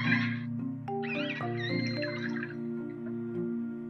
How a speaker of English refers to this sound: All right, let's play a few more sounds, orca sounds.